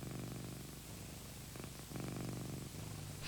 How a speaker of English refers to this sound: I have a cat purring into my mic right now. Oh, yeah. Oh, you have little Jenny.